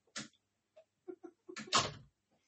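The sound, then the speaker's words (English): A door is pulled shut: a few small clicks and knocks from the handle and frame, then a fuller thud as it closes, with no talking. “I don't know what you said, but close the door, please.”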